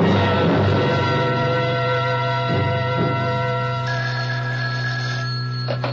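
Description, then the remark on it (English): A telephone rings on the line, a steady electronic tone that holds for several seconds with a brief dip partway through, clear and fairly loud with no one speaking. “First of all, I've got to make a phone call.”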